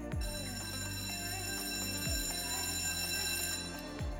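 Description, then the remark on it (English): A school bell rings out in a steady, repeating pattern, its tones renewing about every two seconds. It's loud, with a bright ringing sustain and no voices. “That was the bell after the bell.”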